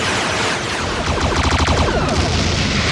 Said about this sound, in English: So it turns out Martok is the changeling, and Odo kind of runs him into the room. Martok tries to tentacle Odo to death, but the Klingons all turn around and whip out their pistols and unload, like, a predator amount of gunfire at the changeling.